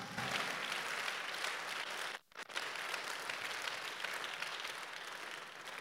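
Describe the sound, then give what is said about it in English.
A large crowd claps steadily for the Lord at a preacher's call during a sermon, a dense wash of many hands, with a brief sudden break midway before the clapping continues at full strength. “Give the Lord a clap of if you are there.”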